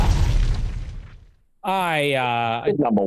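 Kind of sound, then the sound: sound effect, explosion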